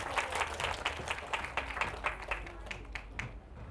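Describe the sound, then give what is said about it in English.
A group of people applauding, with a dense patter of quick, overlapping claps that holds steady at a moderate level, then thins out and softens toward the end. “Let's give him a clap for that.”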